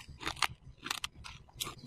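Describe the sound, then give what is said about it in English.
Crunchy sleeping pills being chewed, with about five or six crisp, crackling bites in a loose, uneven rhythm and no talking. “We're all gonna take the whole bottle. You probably need it more than us. It's kind of crunchy.”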